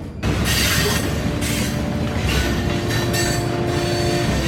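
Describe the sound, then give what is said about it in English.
An old steam train rolls along steadily on a cold winter day, its iron wheels clanking on the metal rails in a loud, continuous rumble with rhythmic hissing bursts about once a second and a faint metallic ringing tone underneath. “As the old steam engine churned the iron wheels below, I took a seat, pulling forward and then backward, clinging and clanking to the metal rails below me.”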